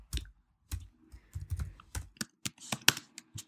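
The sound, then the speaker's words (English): Irregular clacking keystrokes on a computer keyboard, a dozen or so taps in quick uneven bursts, fairly quiet, with no voices, as someone on Etsy.com types "sexy apron" while shopping for an apron. “I'm typing sexy apron.”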